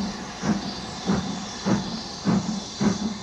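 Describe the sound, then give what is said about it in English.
A steam locomotive pulling the Yellow Mail train starts to roll again as the engineer opens a notch, chuffing steadily with about six heavy puffs in three seconds, each a burst of exhaust over a constant hiss of steam. Moderately loud, with no voices. “The engineer opened a notch, and the yellow mail began to roll again, a minute to the good.”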